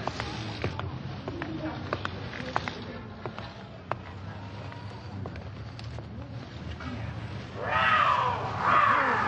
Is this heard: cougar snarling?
yes